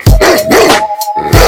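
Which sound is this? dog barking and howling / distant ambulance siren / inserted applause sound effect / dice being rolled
dog barking and howling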